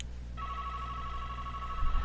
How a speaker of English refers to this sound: Oh, hang on. There's my home phone line. Going to interrupt us for a second.